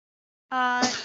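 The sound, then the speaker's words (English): A single loud sneeze: a short voiced intake that breaks into a sharp, breathy burst, then fades quickly. No one is talking. “bless you.”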